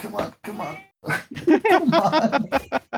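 A person imitates a cat with a string of drawn-out, wavering meows, fairly loud, separated by brief pauses, the last few running together in quick succession.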